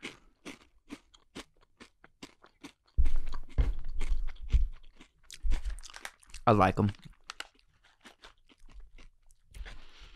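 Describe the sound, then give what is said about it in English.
Someone chews a whole handful of roasted crickets, producing a rapid, irregular series of sharp, dry crunches that grow louder and heavier midway, with brief speech between bites. “See, when you roast crickets, they just kind of taste like nuts.”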